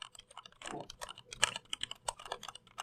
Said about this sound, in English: I actually have an Ergodox EZ here with Cherry MX black switches. I can play it for you if you'd like. Sure. Yeah. Okay. So here's me typing softly.